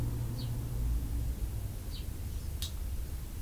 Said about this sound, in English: Can you hear that truck? Truck passes by. Birds chirping. Truck roaring.